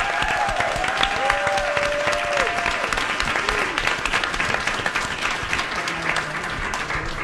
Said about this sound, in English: I want the loudest applause for them because they're just amazing.